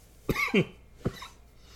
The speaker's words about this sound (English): I'm going to apologize for coughing in your guys' ear. I'm still kind of getting over being sick.